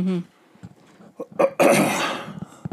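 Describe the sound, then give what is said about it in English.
A short, harsh cough bursts out after a brief voiced sound, a rough breathy blast lasting about half a second before trailing off. “Yep, I'm coughing.”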